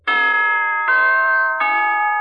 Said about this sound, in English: Now, here's a holiday wish from the NBC Chimes.